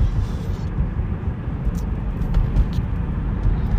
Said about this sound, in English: What do we got here? Oh, I got a fucking salt truck ahead of me. It's the winter time.